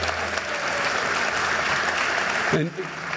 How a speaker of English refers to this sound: And really nice of the rest of you to fucking applaud.